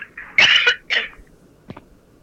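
coughing fit

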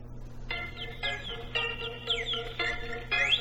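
bird chirping sound effect

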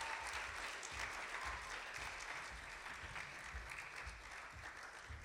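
audience applause

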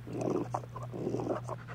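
dog panting

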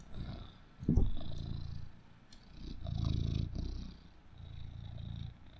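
cat purring

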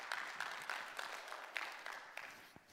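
audience applause

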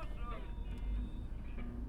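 car idling in traffic

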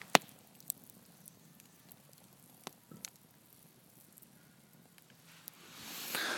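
campfire crackling

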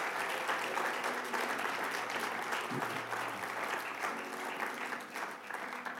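audience clapping

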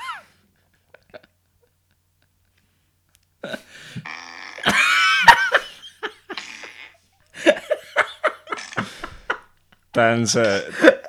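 fart sound effects

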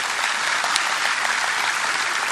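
round of applause

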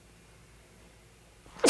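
sneeze

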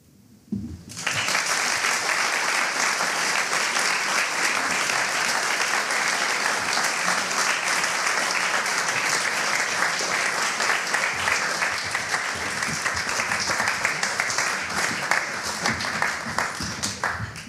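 audience applause

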